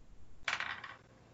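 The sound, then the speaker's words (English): Three dice are rolled for a game and clatter onto a hard table, a sudden burst of sharp clicks that rattle briefly and settle within half a second, fairly loud with no voices; they land showing a 2, a 1 and a 5. “give me a doves roll with 3 dice because Hazel's helping you”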